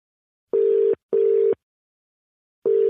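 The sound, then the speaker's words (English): After a phone number is redialed, a telephone ringback tone purrs through the earpiece in a double pulse, two short steady buzzes, a pause, then the pattern starting again. No voices, just the clean, even tone. “Okay, well, stay there because I'm going to hit redial on our phone here and see, does she answer?”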